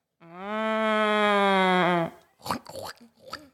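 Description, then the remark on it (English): A woman imitates a cow with one long, steady, droning moo lasting about two seconds, loud, followed by a few short vocal bursts, as part of a sound-guessing game. “A cow.”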